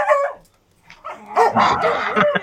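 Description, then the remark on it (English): A dog named Odie barks and yips in a room, a short bark at the start, then a brief pause followed by a run of excited, overlapping barks and yelps during a dog fight. “Yeah, we got a dog bite starting in my room right now.”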